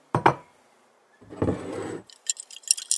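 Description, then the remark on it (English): A glass of lemonade clinks sharply on a sunny afternoon, followed by a second of soft, hissing handling noise, then several quick, bright little clinks like ice knocking against the glass. No one speaks. “brought a glass of lemonade”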